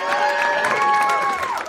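A crowd applauds and cheers loudly, steady clapping blended with whoops and raised voices, filling the whole short stretch without a break.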